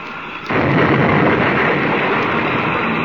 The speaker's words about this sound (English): They did. The ships are locked together. But both of them out of control. They've crashed.